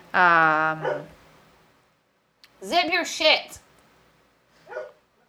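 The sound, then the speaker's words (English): A dog gives one loud, drawn-out bark, then a person speaks briefly. A short, quieter sound follows near the end. “You're getting sassed by the dog.”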